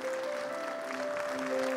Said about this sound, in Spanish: Así que damos un aplauso a Dios por el siervo.